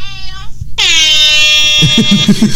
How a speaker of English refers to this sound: It's so loud now. He's using an actual air horn.